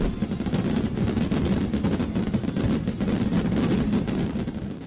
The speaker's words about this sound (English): So fireworks are continually developing and evolving into new styles and new explosions that we see in the displays that we go and love to watch.